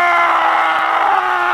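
man screaming loudly

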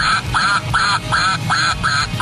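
toy duck quacking

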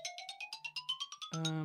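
phone ringtone

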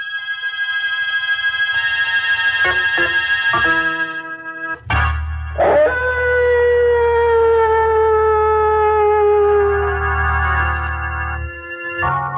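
dogs howling

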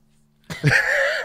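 sneeze

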